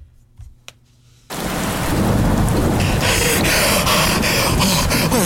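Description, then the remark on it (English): After a moment of near quiet, a heavy storm downpour abruptly roars in outdoors, loud, a dense, steady hiss of rain pounding surfaces with gusty surges and no one talking. “I'm out here in the thick of it now. It's really coming down.”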